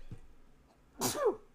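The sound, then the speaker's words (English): A single sharp sneeze bursts out after a quiet pause, loud, with a breathy explosive onset and a short voiced tail. “Bless you. Sorry.”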